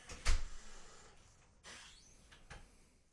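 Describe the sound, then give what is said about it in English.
A door is fumbled open, with a sharp knock-like clunk, then scraping and rattling handle sounds and a couple of softer bumps, with no talking. “I was enjoying watching you try to open the door.”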